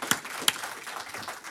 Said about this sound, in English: I want to encourage you to let our teachers know how much you appreciate them pouring into our children. They are doing a phenomenal job. I'm serious. They're really doing good. Yeah, give them a hand clap.